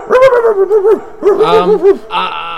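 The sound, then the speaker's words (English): A dog barks and whines in two or three drawn-out, warbling bursts, loud, with no pauses long enough to separate single barks. “Next is the dog. The dog is going after Angel.”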